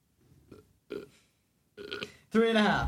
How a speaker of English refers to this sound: I had a beer, so I'm burping.